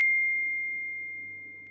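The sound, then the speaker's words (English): A single bright notification ping strikes sharply, then rings as a steady high tone that fades slowly over nearly two seconds, fairly quiet, with a faint low hum underneath and no talking. “I think that was a ping. That was a notification that came up.”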